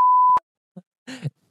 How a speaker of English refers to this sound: Beep!